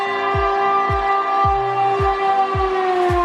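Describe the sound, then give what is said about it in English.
A voice imitates a train, holding a steady whistle-like tone while rhythmic low chugging thumps repeat about six times, evenly spaced and fairly loud, with no talking. “Are you wondering why I'm making these train noises?”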